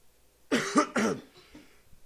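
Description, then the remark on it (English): Two people cough at the same time, a quick cluster of three harsh coughs bunched together in about a second, followed by a few softer throaty traces. No talking. “We both had to cough at the same time.”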